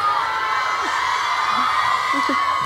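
A crowd cheers in a steady, loud roar, with several rising whoops and shouts breaking through now and then.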